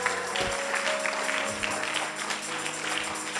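A church audience, risen to its feet, claps steadily throughout, a dense wash of overlapping hand claps with a few sharper slaps standing out, over a low steady hum and no voices.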